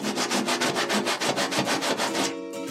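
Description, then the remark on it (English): Quick, steady back-and-forth rubbing of an applicator of Paranormal PP Vanish, a slimy, syrupy product, over treated areas: roughly a dozen and a half brisk scratchy strokes in an even rhythm before it stops near the end, with no voices. “Apply applicator to treated areas and rejoice in the fragrance of a new tomorrow”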